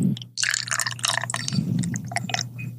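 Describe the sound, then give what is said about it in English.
Hazy beer pours into a glass, a steady splashing, gurgling stream with bright fizzy bursts lasting a few seconds over a low background hum, with no talking. “So, give it a nice pour. It's a hazy boy.”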